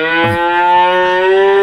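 A cow lets out one long, loud moo that swells slightly upward in pitch and holds steady, with no voices.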